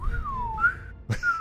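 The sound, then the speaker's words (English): Someone whistles a short, sliding tone that dips and rises, imitating a short sword swung through the air at someone's legs, broken by a brief breathy burst before the whistle resumes. Fairly soft, with no speech. “Oh, yeah, I guess I am going to swing at her legs with my short sword, and it makes a slight whistling sound as it passes by.”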